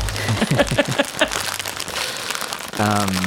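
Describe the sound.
A takeout bag is opened with a steady, dry crinkling and rustling that runs through the whole clip, partly under a man's talking at the start and end.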